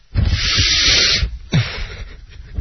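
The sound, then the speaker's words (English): Two loud, airy sniffs with no talking: a long, sustained inhale of about a second, a short pause, then a second breathy sniff that fades out more gradually, as someone sniffs the second of several numbered items. “All right, sniff number two.”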